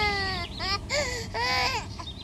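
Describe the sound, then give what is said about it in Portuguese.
A baby cries in a series of high, strained wails, several bursts rising and falling in pitch with short gasping gaps between them, fairly loud, while its grandmother tries to rock it. “entra no quintal e encontra a sogra a tentar embalar o bebê.”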